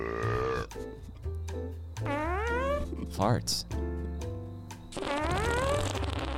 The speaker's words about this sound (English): Farts.